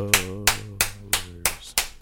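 Six sharp hand claps in a steady, even rhythm, each a crisp burst over a faint low hum, with no voices.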